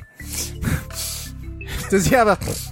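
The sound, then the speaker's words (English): A person does a series of exaggerated, snorting nasal sniffs, three or four sharp breathy pulls, ending in a short voiced grunt over a low steady hum. “Does he have a coke sniff? He definitely always has post-nasal drip.”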